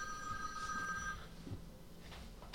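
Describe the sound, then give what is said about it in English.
A phone rings with a steady electronic tone for about a second, then cuts off, leaving faint background noise. The ring is fairly quiet, and no one speaks. “My phone is ringing.”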